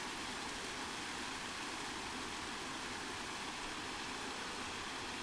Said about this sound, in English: This is just a tiny little waterfall. And as I said before, it'll only be around for a little while. But right now, it's here and I'm here.